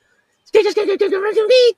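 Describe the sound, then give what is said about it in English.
A human voice imitates a collared Barbary dove's coo: a wavering, throaty hum in several quick pulses ending on a sustained note, fairly loud, with no other sounds around it. “I'm going to walk off the stage doing blackbird impressions and collared Barbary dove impressions.”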